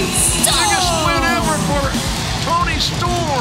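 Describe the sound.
A packed wrestling arena crowd roars and yells on its feet after Tony Storm beats Britt Baker with a spike piledriver, dense overlapping shouts and cheers filling the space at steady high volume, with individual voices rising and falling through the din.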